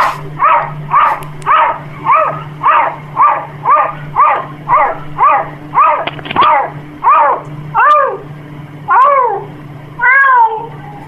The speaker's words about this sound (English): This is a cat that gets caught barking by a human and resumes meowing.